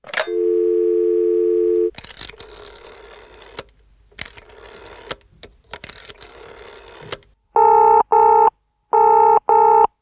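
A phone call to James Cameron in New Zealand: a steady dial tone, then a burst of rapid button-press dialing sounds, followed by four short paired ringback tones of a phone ringing on the other end, clear with no talking.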